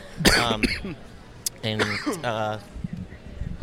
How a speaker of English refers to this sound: My apologies for coughing into the microphone. Yeah, Jesus, man, there's an on-off switch in front of you.